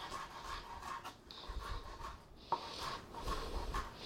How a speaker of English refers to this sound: So peel off all the little paper bits. Now just chop it up. Chop it. Mince it is what we're going to do. We want it fine. We want little bits on this.